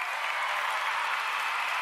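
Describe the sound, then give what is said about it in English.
Steady applause from a group, a dense wash of clapping that holds at an even level throughout, with no voices standing out above it. “We got to give him a round of applause.”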